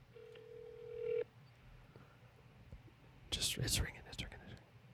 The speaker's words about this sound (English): Just give him a quick call, see what's up. Maybe leave a message. Okay. All right, we're ringing.